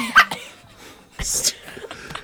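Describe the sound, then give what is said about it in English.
A person lying on their side coughs: a short, sharp burst at the start, then after a pause a longer, harsher rasping cough, with some strained vocal sounds in between and no clear speech. “Never cough when you're laying on your side.”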